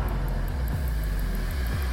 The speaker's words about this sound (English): Raymond Sheely accelerates the car